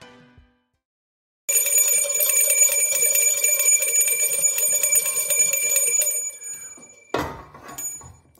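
A loud, continuous metallic bell ringing, rung for expected trade deadline deals by the Pacers, rattles on for several seconds with a rapid, buzzing clang, then cuts off, followed by a brief burst of noise at the end.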